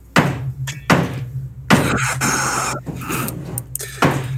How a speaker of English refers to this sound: I've got my hammer right here. This is ASMR for carpenters.